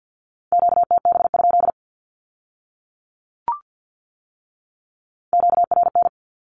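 Rapid Morse code beeps sending radio Q-codes at 50 words per minute in a steady mid-pitched tone, in two quick bursts separated by a few seconds of silence, with a single short click in the gap.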